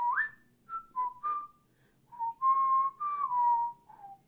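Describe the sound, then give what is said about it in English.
Someone whistles a short melody, clear and steady: a few quick notes, a brief pause, then longer sustained tones that glide downward to finish. No talking. “The little interlude from Community.”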